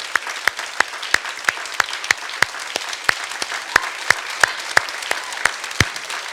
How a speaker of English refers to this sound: I actually believe that we have a World War II vet here with us today. And so I just want to give a round of applause.